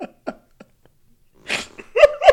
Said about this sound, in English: I just came in here to cough. I'm just coughing.